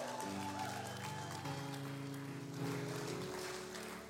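A church audience applauds a speaker in a dense, steady wash of clapping that holds for about four seconds, while sustained keyboard or organ chords play underneath and shift partway through.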